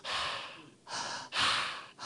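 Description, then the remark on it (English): A person breathes loudly and deliberately as a demonstration of breathing, with three or four heavy, airy breaths in quick succession, each a broad hissing rush of air. No talking. “They lie as though they are breathing. That's a lie. You see how you breathe?”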